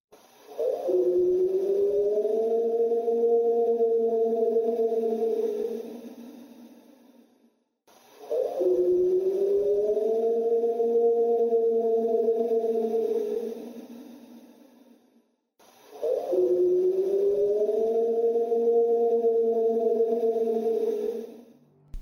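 A purported Sasquatch yell from a summer 2018 recording plays three times as identical loops: each a long, loud howl that swoops up, then holds a steady, slightly wavering mid-low pitch for several seconds before fading.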